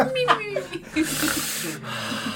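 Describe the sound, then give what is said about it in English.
A woman fakes a snore, with a low nasal snort and a raspy, hissing breath drawn out over a couple of seconds, voiced and exaggerated. “She has fake snoring.”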